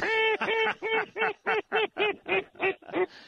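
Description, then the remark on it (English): A loud run of about ten nasal duck quacks in a steady, evenly spaced rhythm, slightly shortening toward the end, with no talking over them, heard from a duck blind in Louisiana. “I just got back from Mexico 2 nights ago, and now I'm in a duck blind in Louisiana. Somebody got dominion over all these birds.”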